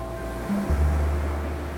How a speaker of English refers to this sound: Ocean waves. When Mike first saw the ocean 2 summers ago on a beach in San Francisco, he was enthralled. He dropped the belt he always carries, threw himself on the sand that was warm and fine, and listened to the sound of the surf.